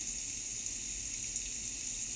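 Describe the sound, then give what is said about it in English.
Steady rain falls in an even, continuous hiss with a bright watery texture, holding a constant level throughout, with no voices or separate drops standing out. “So that all this rain is taking all of that away.”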